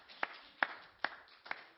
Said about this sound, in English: Let's give God a hand clap of praise for his word. Amen.